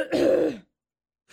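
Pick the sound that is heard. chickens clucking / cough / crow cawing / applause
cough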